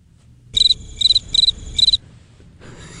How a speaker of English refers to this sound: The old crickets.